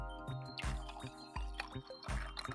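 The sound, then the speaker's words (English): Poland Spring water is poured to top off a glass of iced coffee made from homebrew concentrate. It pours in a series of gurgling splashes with faint ice clinks that repeat in uneven bursts. No one speaks. “Then we get ourselves some nice Poland Spring water here to top it off.”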